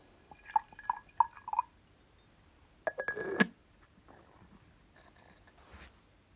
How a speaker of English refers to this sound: I'm gonna pour another bowl of tea.